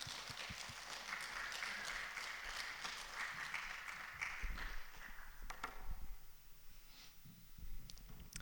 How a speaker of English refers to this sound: But yeah, a round of applause, that's a good idea.